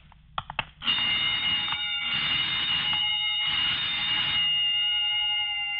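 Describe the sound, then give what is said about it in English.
A burglar alarm being tested rings loudly in three long bursts, a steady harmonic tone with brief gaps between, preceded by a few sharp knocks or clicks. “Oh, just testing the burglar alarm, I guess.”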